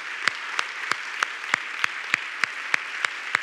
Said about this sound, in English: Come on and clap your hands like you're excited about it.